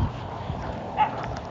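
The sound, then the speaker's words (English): A puppy gives a single short, high bark about a second in, fairly soft and set against a low, steady background hiss with no talking. “Wow, that puppy.”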